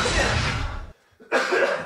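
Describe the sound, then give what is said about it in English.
A person coughs harshly and repeatedly, a loud burst of hacking, a brief pause, then another rough round of coughing. “Okay, while you're dying of a coughing fit over there.”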